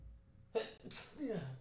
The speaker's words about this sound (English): Hold on, I gotta sneeze. Bless you.